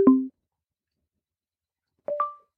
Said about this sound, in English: Done. Sound mode is on sound now. And it played a sound to confirm.